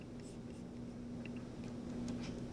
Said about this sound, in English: Arach Ampin refers to, yeah, I don't mind typing it out, no problem. Give me a second here.